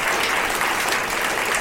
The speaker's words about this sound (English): Well, let's give DC his own round of applause.